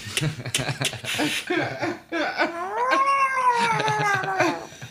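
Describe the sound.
A man does a drawn-out, wavering cat meow that climbs and then slowly falls, loud, after a short burst of breathy laughter-like sounds.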